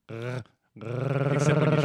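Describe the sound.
A human voice imitates a Wookiee's growling roar: a short rough burst, a brief pause, then a longer throaty, rattling growl with strong low harmonics that swells and holds loudly.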